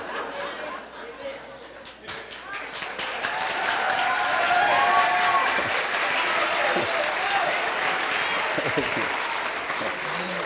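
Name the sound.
audience clapping hands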